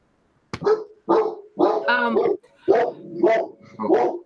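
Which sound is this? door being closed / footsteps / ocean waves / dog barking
dog barking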